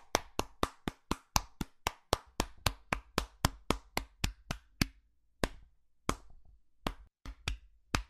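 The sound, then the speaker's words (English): Steady, evenly spaced hand claps, about four per second, crisp, from what sounds like one or two people, then slowing into a few scattered claps before stopping. “First off, thank you for giving me the clap.”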